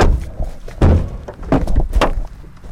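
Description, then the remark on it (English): Several solid knocks on the door of a judge's house in Mississippi, spaced unevenly, loud, each a dull thump with a short ring between them. “Rena and I decided to drop by and knock on his door”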